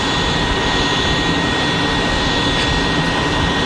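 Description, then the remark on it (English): A jet airplane engine roars steadily and loudly, a dense rushing hiss topped by a thin high-pitched whine, holding constant without any break or voices. “It might be a bird, possibly a plane.”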